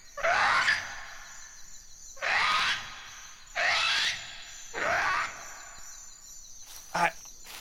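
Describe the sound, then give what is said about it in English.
Four loud, drawn-out calls come at even intervals, each a rising, wavering cry with a harsh, almost groaning quality, followed by one short sharp note. No one speaks. “I don't think I've ever heard birds like that.”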